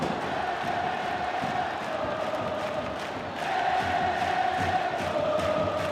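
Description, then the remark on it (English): A large stadium crowd at a football game roars and cheers continuously, a dense wash of many voices that swells louder about halfway through, with scattered shouts rising above the din. “So maybe what does a crowd sound like? So I got one here from a football game.”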